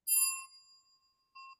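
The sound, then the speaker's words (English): A bright notification-style bell ding rings out and fades, followed a moment later by a shorter, softer second chime; both are clear, with no voices. “If you haven't already, please be sure to like, subscribe, and click the notification bell.”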